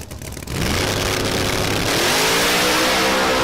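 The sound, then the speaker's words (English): A loud, high-powered supercharged drag car roars to full throttle down the track in Orlando, its engine note climbing steadily with harmonic whine as it accelerates hard, with no talking. “I think this car is a 369 car. Procharge S, what is it? SN or New Edge.”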